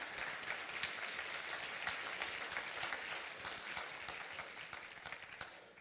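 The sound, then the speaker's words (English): A crowd applauds steadily during a sermon, giving the Lord a hand clap of praise, many hands clapping in a dense, even wash of sound that holds at a fairly constant level throughout, fading only slightly at the end, with no voices. “Come on, get the Lord a hand clap of praise.”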